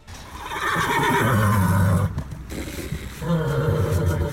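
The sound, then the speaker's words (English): A horse named Kay neighs loudly: a long strained whinny that breaks off briefly before a second rough, drawn-out call follows, with no talking over it. “Genuinely Kay the horse.”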